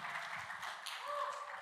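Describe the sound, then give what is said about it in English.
A crowd claps steadily for a pastor coming up to share, in a dense, even patter of applause that holds a consistent level throughout, with a faint brief tone briefly rising above it near the end. “Yeah, let's clap one more time awkwardly for him.”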